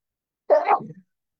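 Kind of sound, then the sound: human body sound, sneeze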